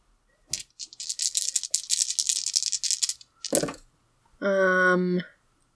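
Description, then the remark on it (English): Dice rattle and clatter in a dense burst of clicks for a couple of seconds, followed by a sharp knock, then a short, steady voiced tone. “I need you to give me a quick roll.”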